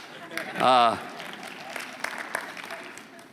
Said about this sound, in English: Now you can clap.